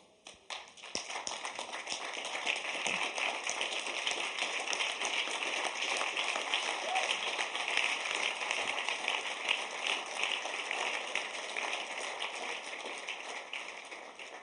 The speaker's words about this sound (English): Wow, your clapping is weak. Very, very, very weak.